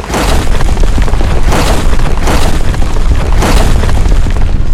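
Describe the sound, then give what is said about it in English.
Heavy, booming stomps rumble continuously, with several deep impacts landing roughly every second over a constant loud low-end roar: a giant turtle titan's mighty stomps shaking the ground in a minor seismic event. “One minor seismic event coming right up courtesy of a few mighty turtle stomps.”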